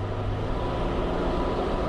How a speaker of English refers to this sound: Machines hum and whir just as they would at any other power plant in the country.